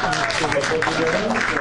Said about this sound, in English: So I've been getting into the show Naked and Afraid. Round of applause to the people who have seen that show.